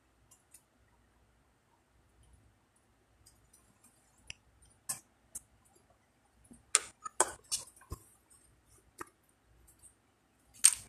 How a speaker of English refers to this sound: I'm typing some things in the chat room.